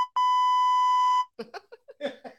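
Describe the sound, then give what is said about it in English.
A loud, steady censor bleep rings out for about a second, a pure electronic tone cutting off abruptly, followed by a few quick bursts of someone talking. “You can kiss my beep.”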